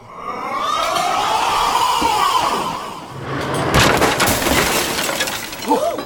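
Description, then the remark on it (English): In a restaurant, a long, wavering high-pitched scream gives way to a loud crash as a table is thrown over and glass shatters, with a burst of tinkling shards fading out and a brief voice at the end. “Why did you throw over the table”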